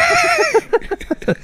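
A horse neighs loudly: a high, wavering whinny that slides downward, then breaks into a quick run of stuttering, snorting pulses before stopping.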